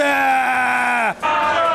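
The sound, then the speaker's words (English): Members of parliament shouting over the Prime Minister in a loud, sustained vocal clamor that holds steady, dips sharply in pitch and briefly breaks off, then resumes with no clear words. “There's no good people shouting.”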